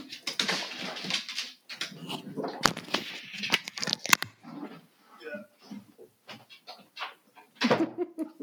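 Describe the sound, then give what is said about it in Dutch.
A dog makes a series of short whines and yelps in irregular bursts, as if pleading for attention, with brief pauses and rustling between the outbursts. “Aan mijn hond. Er wou iemand aandacht.”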